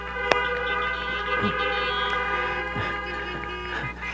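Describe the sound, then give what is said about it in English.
Several car horns blare together as praise to Jesus, in a long, steady, overlapping chord, held for the whole stretch at a fairly loud level, with a sharp click near the start. “Let's give Jesus just a big hand clap of praise or a horn honk.”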